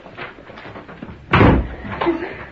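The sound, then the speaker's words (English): A door is shut with a single loud thud partway through, followed by softer rattling and shuffling noises as it is locked, against a low, murmuring background. “Lock the door.”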